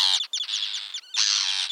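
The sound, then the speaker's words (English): An angry Arctic tern hovers overhead and screams on a small coastal island in Iceland, harsh grating calls in a few rapid bursts, loud, with a brief gap before a longer raspy cry. “I was out doing some birding with my group when here comes a very angry Arctic tern. The bird hovered over my head and screamed at me.”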